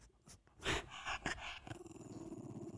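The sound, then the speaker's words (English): A dog that growls only when it has a toy growls, starting with a few sharp snarling bursts and settling into a steady, throaty low rumble that pulses on and off. No one is talking. “That's the only time he growls, when he has like a toy or some shit.”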